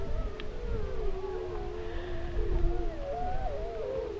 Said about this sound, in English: We wait for several minutes, then off to our right, on a tree-covered ridge, wolves begin to call.